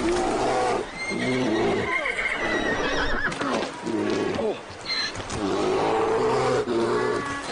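A horse frightened by a bear as its rider Ennis comes upon it in a film whinnies and neighs loudly and repeatedly, shrill panicked cries coming in bursts, with hooves clattering and a low rumbling growl mixed underneath.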